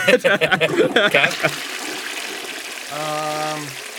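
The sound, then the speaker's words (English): After a burst of talking, a toilet flush sound effect is played to reject a Perfect Dark soundtrack track. A steady rushing wash of water lasts a couple of seconds, with a brief low humming tone rising through it near the end. “I was never struck that it was that grandiose, so I'm going to give it a flush.”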